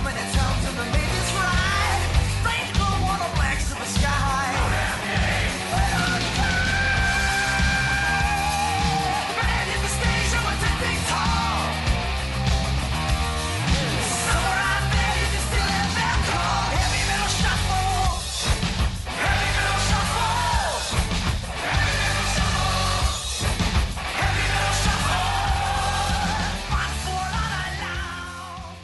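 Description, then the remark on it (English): A loud heavy metal song plays throughout, with dense distorted guitars and pounding drums locked into a loping, shuffle-like groove that never lets up for the whole stretch. “The funny thing about this song, it's a tricky rhythm to describe. You could argue to some extent that it does have a bit of a shuffle to it.”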